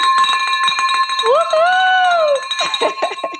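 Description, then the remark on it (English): A new bell, rung in celebration, rings loudly and steadily with a sustained metallic tone, punctuated by rapid clattering strikes, while a voice lets out a long rising whoop partway through. “Like, I'm like, oh my gosh, one day I'm going to get the bell rung just for me.”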